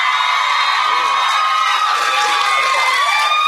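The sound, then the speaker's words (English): A loud audience cheers and shouts continuously, many high voices whooping and yelling together in a dense, sustained roar lasting a few seconds, cheering to vote that Harry Potter will live by the end of the Deathly Hallows book. “If you think he is going to live, cheer now.”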